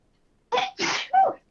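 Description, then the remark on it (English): A loud sneeze comes in three quick, breathy bursts, the last one partly voiced. There is silence before it and no talking. “Bless you.”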